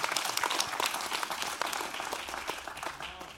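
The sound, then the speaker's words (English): A church audience claps for the Lord, many hands blending into a dense, bright, continuous patter of applause that holds at an even loudness throughout, with no voices standing out. “Listen, if you're going to clap for the Lord, clap like you mean it.”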